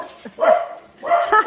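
A dog barks twice in quick succession, two sharp, fairly loud yapping barks separated by a brief pause with no voices.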